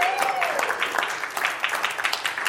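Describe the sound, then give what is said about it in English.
An audience applauds the speaker's wife on their 26th wedding anniversary, a steady, dense crackle of many hands clapping at once that holds a fairly even level throughout, with a brief high whistle-like tone early on. “I can only assume that you're clapping for her.”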